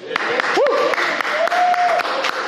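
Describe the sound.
A church audience claps steadily in a dense, continuous patter to welcome a visitor, with a few rising whoops and a sustained cheering voice cutting through the applause.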